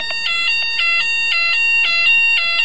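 A fire alarm blares nonstop, a loud, shrill electronic tone pulsing in a fast, regular pattern of repeated beeps that fills the whole clip with no voices.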